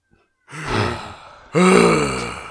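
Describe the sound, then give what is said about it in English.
Two loud, breathy gasps, the second longer and stronger, as someone takes breaths after holding their breath. No talking. “Here, take a couple breaths, and then go back to holding my breath.”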